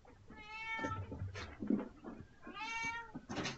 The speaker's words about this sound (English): So let me pause you there for a second, guys. I've got a meowing cat here I've got to kick out.